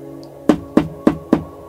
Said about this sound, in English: The tapping came from the front door only a few feet behind me.